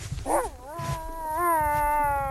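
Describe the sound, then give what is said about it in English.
A neighbour's dog gives a short sharp yelp, then breaks into a long, high, wavering whine that rises and holds, clear with no voices around it. “No, I think that's next door's dog.”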